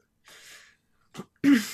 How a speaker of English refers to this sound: I'm gonna sneeze.